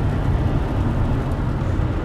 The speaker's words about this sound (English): It's raining pretty hard. Can you guys hear the rain? I think you can. I think you can.